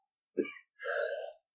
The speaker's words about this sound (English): Yeah, harsh. Why don't you cough a little more into the mic, you know?